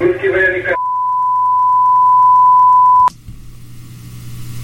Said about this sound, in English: put that long beep in there on purpose to add the whole dramatic to it